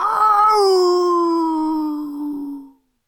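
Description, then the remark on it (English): During a Dungeons & Dragons game, a person vocally imitates a dying beast's wail as it slumps down and burns to ash: one loud, drawn-out cry that starts strained, slowly sinks in pitch, and trails off after almost three seconds. “And it, with its very last amount of consciousness, it kind of releases a...”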